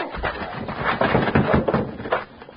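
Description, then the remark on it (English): A locked wooden door is battered and broken down: a run of heavy, loud thuds and splintering cracks, about five blows in irregular succession, with scraping and creaking between them. “Locked. We'll have to break it down.”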